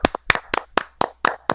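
A short burst of steady hand clapping for the winner of a Survivor pool: about seven sharp, crisp claps in an even, brisk rhythm, sounding like one or a few people applauding, with no talking.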